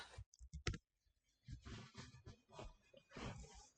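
A few quick, sharp keyboard clicks at the start, then a longer stretch of louder, rough, pulsing noise that fills the rest of the moment.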